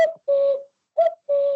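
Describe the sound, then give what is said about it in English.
A person imitates a cuckoo's call to call cuckoos in, giving two paired hooting notes, each a short higher note followed by a longer, lower one, clear with no other sounds. “I often call cuckoos in by mimicking their sounds. I'll do one now.”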